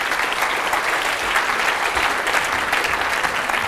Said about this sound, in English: So let's give our volunteers a round of applause.